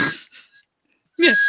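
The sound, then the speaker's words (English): Two short, shrill blasts on an emergency whistle, airy and breathy with a steady high pitch, separated by a brief pause; the second blast is louder. “This also comes with an emergency whistle in case you nip yourself whilst crafting your bush.”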